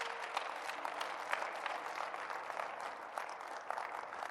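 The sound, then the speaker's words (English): An audience claps together in a dense, steady burst of applause filling the room, many hands striking at once with no break and no voices standing out. “Clap your hands.”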